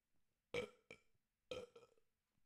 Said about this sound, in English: I got a burp. Hold on.